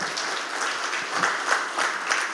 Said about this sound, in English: Let's clap on that one properly, just to warm the